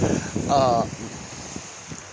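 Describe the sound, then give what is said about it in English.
A steady rush of ocean surf fills the whole moment, a broad hissing wash with a brief burst of a voice near the start. “Boy, this water, it sounds so, I just love the sound of the ocean.”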